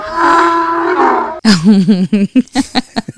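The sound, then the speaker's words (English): A donkey brays loudly: one long, drawn-out wheezing note, then a run of rapid, rhythmic hee-haw gasps that sputter out. “You really had to put the donkey.”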